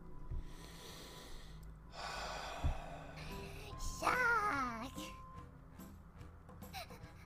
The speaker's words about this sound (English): Why does she do the heavy breathing too? She does that constantly. That's her thing.